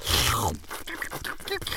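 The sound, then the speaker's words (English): A loud scraping whoosh sliding downward gives way to crunchy chewing, a quick irregular run of crisp bites and munches with no talking, as someone eats pigeons. “don't eat the inside-outed pigeons!”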